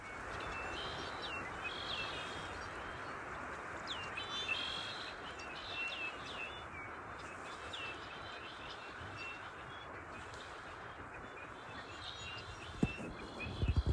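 A dense flock of red-winged blackbirds, gathered seasonally in reedy marshland, keeps up a continuous chorus of buzzy, metallic calls over steady wind sighing in the redwoods, the massed birds sounding constant throughout.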